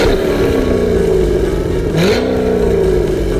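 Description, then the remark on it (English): A loud dirt track race car engine revs hard, its pitch dipping briefly before climbing again, a continuous roaring drone with rattly mechanical texture and no voices. “Grab your earplugs and get ready for some dirt track racing. So let's get revved up.”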